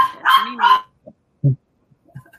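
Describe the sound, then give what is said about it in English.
A dog named Mimi gives two quick, loud barks, followed by a few softer, shorter yips and small sounds trailing off into quiet. “We don't even have company often, so I don't know why she barks.”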